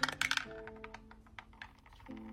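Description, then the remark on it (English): Dice are rolled across a hard table to choose a main ingredient, in a quick flurry of sharp clicks, then a few scattered lighter taps as they settle, with a soft steady tone humming underneath. “Next up, roll for our main ingredient.”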